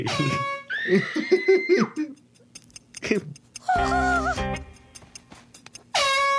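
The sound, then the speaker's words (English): A loud, blaring air horn relabelled as hairspray sounds in a steady, buzzy blast as Luann uses it on her hair, then starts again abruptly at the end. Before it, high excited vocal cries and yelps are heard. “And the first one is to remove the hairspray logo and label and put it on to the air horn.”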